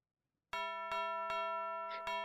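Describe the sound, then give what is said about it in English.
An electronic house doorbell, wired to play a Christmas tune, rings out loud, a buzzy sustained chime struck in a steady series of notes about every half second, with no voices. “Pushed the bell.”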